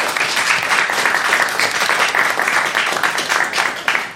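A loud, sustained round of applause from a crowd for a quiz player who has just earned bonus points, dense rapid clapping filling the whole stretch with steady intensity and no talking over it.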